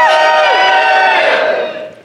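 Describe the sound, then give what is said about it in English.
A crowd in the next room screaming and shouting all at once, a loud, dense wall of high voices held for almost two seconds before trailing off quickly at the end. “We're getting, we have noise from the next room.”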